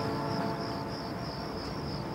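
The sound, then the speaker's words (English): A steady, high-pitched drone of cicadas buzzing continuously throughout, with a low background rumble underneath and no voices. “Oh, yeah, the cicadas.”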